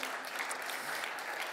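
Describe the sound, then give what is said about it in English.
An audience claps together in a brief burst of steady, dense applause that fills the whole moment without letting up, applauding a historic document brought as memorabilia. “Would you give this a round of applause?”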